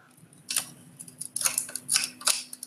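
A series of sharp metallic clicks and short scraping snaps, four or five bursts at irregular intervals, as a locking pin is held in, given a quarter turn and drops into its slot, over a low steady hum.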